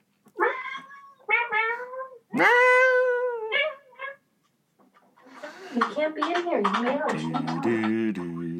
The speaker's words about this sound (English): Little black cat just woke up. I gotta put her outside. Oh. She's just gonna start meowing up this goddamn storm.